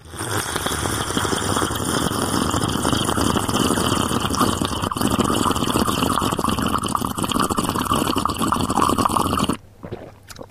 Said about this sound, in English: Lovely slurp. It was a good slurp, wasn't it? It was a double slurp. It's made my eyes water.